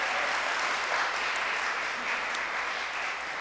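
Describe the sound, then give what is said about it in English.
A church crowd applauds steadily for the people baptised on a day of baptisms, a dense wash of clapping hands that holds at an even loudness for a few seconds without any speech over it. “Let's give them another round of applause, because that's really exciting.”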